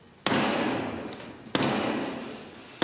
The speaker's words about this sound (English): The King's Speech, though, it is a great occasion, packed full of ancient customs. And quirky traditions, including the slamming of the door in Black Rod's face, followed by the knock.